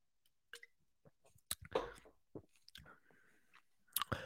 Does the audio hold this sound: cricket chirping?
no